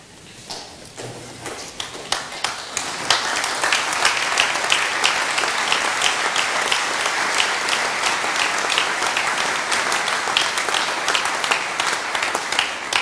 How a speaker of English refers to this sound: I'm not sure if you're clapping because I said I'm quitting because I'm out of time or because you like it